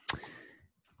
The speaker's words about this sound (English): Oh, there's the typing. yeah, you can hear it.